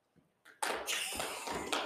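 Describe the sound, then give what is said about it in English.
A live studio audience claps after a couple of soft taps, the applause swelling into a steady, dense patter of hands that holds until the end. “So also, we're joined today by a live studio audience. So if you hear anyone, that's who that is. Clap.”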